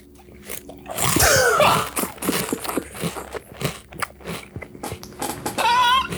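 Loud crunching of dry cereal being bitten and chewed, a dense run of crackly snaps and grinding bites filling the whole clip with no talking.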